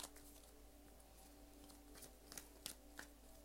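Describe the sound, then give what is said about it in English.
Tarot cards being shuffled during a reading: soft riffling flutters and a few sharper snaps of cards, quiet and irregular over a faint steady hum, with no one speaking. “There are no cards that have come out yet. None. I'm still shuffling.”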